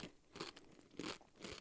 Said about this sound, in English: Oh. I mean, they taste like potato chips. They're really crunchy.